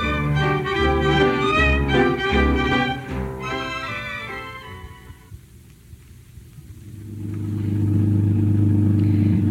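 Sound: car engine running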